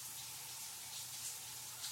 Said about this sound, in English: I step beneath the flow of hot water. That feels good.